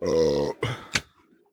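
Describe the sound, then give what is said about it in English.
A loud, drawn-out burp with a deep, buzzy tone, followed by a short guttural grunt and a sharp breathy puff, with no talking. “Oh, I got a burp.”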